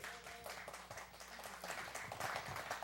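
Steady applause from a crowd, a dense wash of many hands clapping at an even level throughout, fairly soft overall, with no one speaking over it.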